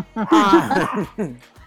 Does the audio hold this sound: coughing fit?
no